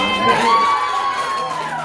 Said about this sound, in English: This is how Saturday night ended for comedian Ariel Elias, with someone throwing a full can of beer at her during a set. She picks it up and chugs it to roaring applause.